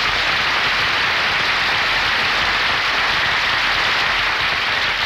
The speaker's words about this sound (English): Folks, it's Mel Blanc. Give him a big hand.